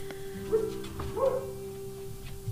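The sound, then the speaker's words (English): A dog barks twice, short yips about half a second apart, over a steady low electrical hum, with no one talking. “Dog? Dog.”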